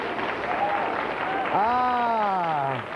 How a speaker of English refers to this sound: Can we please have a nice round of applause for the finest informant ever on this show?